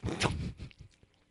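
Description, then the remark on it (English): A noisy slurping sip of Pumpkin Ale from Aleworks, a Williamsburg, Virginia brewery, about half a second long, followed by a few faint mouth sounds and near silence. No one speaks. “Hold on, let me take another sip.”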